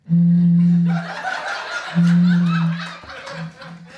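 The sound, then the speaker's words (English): Two long, low, hooting tones made by blowing into a large bottle, each lasting nearly a second, with laughter and chatter rising underneath and continuing after. “This is me blowing into a large bottle.”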